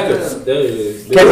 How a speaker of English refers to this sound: Well, you know, bless you.